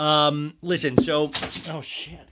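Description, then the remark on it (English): Something gets knocked off a table, a single sharp thud-and-clatter about midway through, fairly loud, landing under a continuous drawn-out voice that keeps going around it. “You guys, I like to leave when I knock things off of my table in the actual show.”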